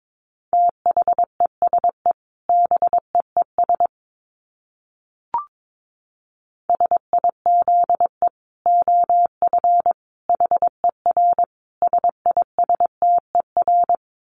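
Morse code sent at about 22 words per minute: a single steady mid-pitched beep keyed on and off in quick runs of short and long pulses, with one brief pause midway and no voices.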